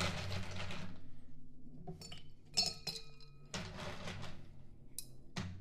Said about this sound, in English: Now I'm going to put ice into the shaker.